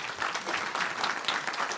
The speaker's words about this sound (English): I'll wait while you clap your hands there.